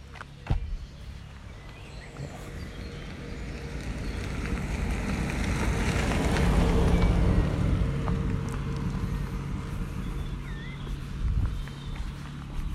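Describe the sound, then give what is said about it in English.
An open-top vintage car with its hood down drives steadily, turning off a lane onto a field, its low engine drone under heavy rushing wind that swells toward the middle, with a few faint bird chirps near the end. “Vintage car, hood down. Right, getting off the lane now onto the field.”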